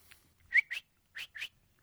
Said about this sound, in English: It was a cricket. I love crickets.